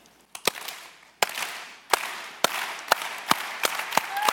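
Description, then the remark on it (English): A church audience's slow clap, started by the leader to welcome the morning's preacher: sharp, loud unison claps that start well spaced and steadily quicken, with scattered applause and noise swelling underneath as it builds. “I'm going to start us a slow clap and we're going to welcome Chris, okay?”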